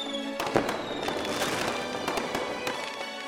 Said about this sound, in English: the procession of Venthaven summons legions of fireworks and bright lights, bursting all about the stadium in flashes of beautiful color, a kaleidoscope of arcane power.